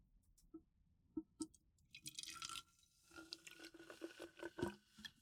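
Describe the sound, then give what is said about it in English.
A few scattered drips, then a little drink pours steadily into a cup with a gurgling, filling sound that continues to the end, fairly quiet, with no talking. “I tried to pour a little drink in.”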